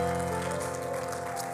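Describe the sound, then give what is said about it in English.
A crowd claps in praise to the Lord in a dense, steady patter of many hands, sustained and fairly loud, with a held musical tone running underneath and no voices. “Would you give the Lord a great hand clap of praise tonight?”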